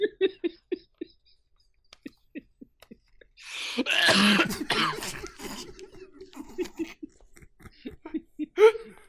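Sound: coughing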